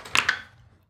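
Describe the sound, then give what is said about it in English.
Two quick, sharp clacks of dice striking a hard table, the second a bit softer, followed by a brief fading rattle and then quiet. “Whew, come on, dice. Come on, dice.”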